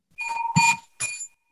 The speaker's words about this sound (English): So I'm saying something, and every time I say a certain word, a bell rings. So that's all good. Is it? Yeah. That's a very loud bell, actually.